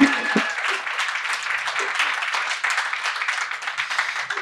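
A crowd applauds steadily, with dense overlapping clapping at a fairly even loudness throughout, fairly close and sustained without a break.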